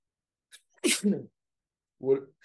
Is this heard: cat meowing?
no